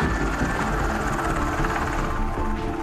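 A helicopter drones steadily and loudly, its rotor chop and engine roar filling the whole stretch with a constant rumble and no voices.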